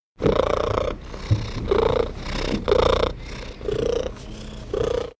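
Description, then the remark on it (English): A male domestic cat purrs in steady, rhythmic cycles, about six breaths, each carrying a faint high-pitched, whiny tone woven into the rumble; it is his morning purr, asking for food. “The morning purr. Yeah, that's the one where he's asking for food.”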